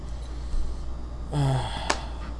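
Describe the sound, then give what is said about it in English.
A single brief yawn, with a voiced tone that slides downward before trailing off, then a quick click. Nobody is talking. “Well, I'm in between when I'm yawning, apparently, even though I woke up at 2:30 in the afternoon”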